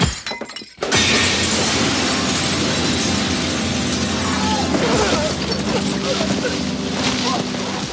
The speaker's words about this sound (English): The second bit is when Holly smashes Nada over the back of the head with the bottle and pushes him out the window.